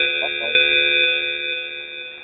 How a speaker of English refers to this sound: What was that? That was the mandatory evacuation alarm that they're going to ring when you guys go there.